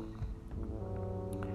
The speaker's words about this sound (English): The foghorn blew.